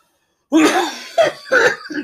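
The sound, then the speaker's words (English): A close, loud burst of harsh coughing, three or four rough hacks in quick succession after a brief silence, with no talking. “You coffee makes me want to cough.”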